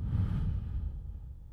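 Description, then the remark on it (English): A single long, deep exhale of breath, with a breathy rush of air that starts full and gradually fades over a second and a half. “So let's breathe.”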